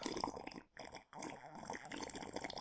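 Water pours steadily in a broad, splashy stream, briefly stopping twice before continuing, fairly loud, as someone pours a little water for another person.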